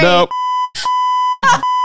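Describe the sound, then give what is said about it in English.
A loud, steady high-pitched censor bleep from a beep button holds for well over a second, its flat tone cut into by short bursts of people talking at the start, middle and near the end. “I have a beep button right here, so I can mute you.”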